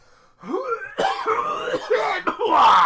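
A series of harsh, throaty coughs, three or four bursts in quick succession with a rough, clearing quality and no speech, coughed over goods being shown at a shop counter.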